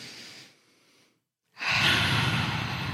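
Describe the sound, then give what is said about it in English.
Deep breathing as people take a moment to breathe together: a soft airy breath fades away, a brief silence follows, then a long, loud, rushing exhale carries on to the end, with no talking. “Let's take a moment to breathe”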